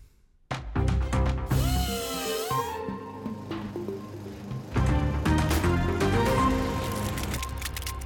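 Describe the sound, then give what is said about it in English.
A power drill whirs loudly, its motor whine climbing in pitch as it revs, then grinding on steadily through several bursts with no one talking. “Actually, I do like my drill sounds.”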